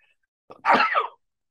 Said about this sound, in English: It makes me sneeze.